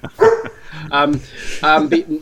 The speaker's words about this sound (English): Like, you see, someone's dog agrees. Someone's dog agrees.